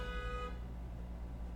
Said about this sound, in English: Once again, the the dramatic timing of the horns outside. Impeccable.